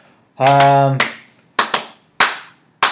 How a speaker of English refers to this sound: Some clapping.